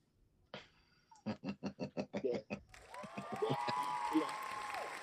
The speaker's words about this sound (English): I'll take that applause. Y'all a little late with that shit, but yeah, I'll take it.